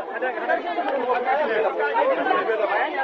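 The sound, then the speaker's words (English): A crowd of people waiting at the house of the mayor of Kusane for a food voucher distribution chatters and murmurs all at once, a dense, steady wash of overlapping voices with no single speaker standing out, holding an even loudness throughout. “A procession leads to the mayor of Kusane's house, where another crowd is waiting, this time for a food voucher distribution to get underway.”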